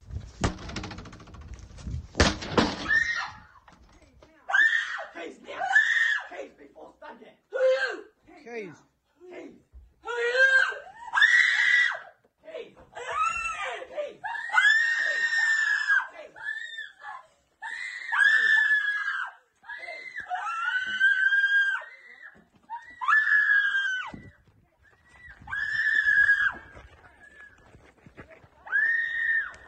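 A sharp bang as young criminals burst through a motel room door, then a person who had been asleep screams loudly and repeatedly in frantic, shrill bursts separated by brief gasps, some cries shouting "Who are you?"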